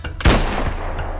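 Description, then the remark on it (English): A single sharp, heavy sniper rifle shot, fired from the roof of a car at the back window of a taxi cab, cracks out with a booming low-end punch, then rolls off in a long, fading rumble. No voices, just the lone blast and its decay. “No matter though, I get low on the roof of the car and aim right at her head in the back window of the taxi cab and pull the trigger.”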